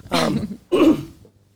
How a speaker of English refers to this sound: we all got the cough today. I know. Sorry.